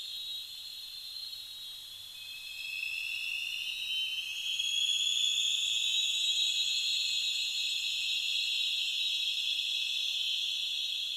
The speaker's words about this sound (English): Also, it was loud enough that you can hear the sonar is essentially reflecting, echoing back and forth over the canyon walls.